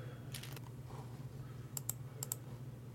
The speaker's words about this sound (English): I am shuffling because I got a joker.